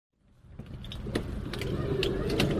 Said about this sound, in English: So, I guess, can I just shut the doors, get the sense of... so we just shut the doors. This is as if I've been shut in a padded wardrobe.